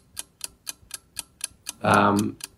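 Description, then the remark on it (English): A 60-second clock timer for a quiz round ticks in a steady, brisk rhythm, about four ticks per second, crisp; a short burst of a voice briefly cuts in over the ticking near the end. “Well, let us put 60 seconds on the clock. Your time starts now.”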